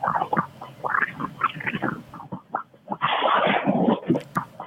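Gusty wind roars and rumbles throughout, then a big tree gives way and falls with a loud, sustained crunching crack lasting about a second before the wind noise continues. The tree stood about three to four houses to the north.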